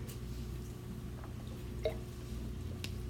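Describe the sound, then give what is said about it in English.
A quiet sip of a drink: a soft wet slurp and a small gulp over a steady low hum, with no talking. “Let me take a sip.”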